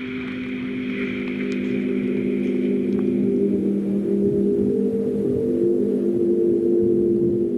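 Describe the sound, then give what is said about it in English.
A steady, low droning hum from a sound garden, with a machine-like quality, holds constant throughout, layered with stacked tonal bands and a faint, airy hiss above; no one speaks. “Is the low hum that you hear? It sounds almost like a machine.”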